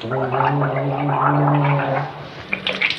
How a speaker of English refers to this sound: … gargles through the end of his tour. Secret mixture of honey, vinegar, and warm water.